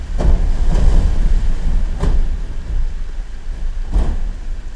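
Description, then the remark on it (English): Air bubbles trapped in melting glacier ice burst underwater, a few sharp crackling pops rising from a steady, deep watery rumble, some close together and others spaced seconds apart. “And in the case of melting, what we can hear are the explosions or bursts of bubbles that are trapped in the ice.”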